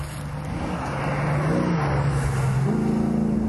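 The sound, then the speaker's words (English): The V8 engine of a left-hand-drive Mustang Shelby GT500 fastback with an automatic gearbox idles with a deep, throaty rumble and then revs up, rising in pitch near the end. Loud and continuous, with no talking. “A left-hand drive Mustang fastback with a slush box. 500 GT.”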